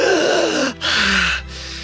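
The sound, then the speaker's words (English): A woman's sharp, loud gasp for breath with a falling, strained tone as she revives and opens her eyes, followed by a brief pause and a second breathy gasp, with no talking. “And she opens her eyes, gasping.”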